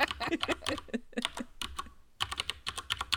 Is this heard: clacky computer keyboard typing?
yes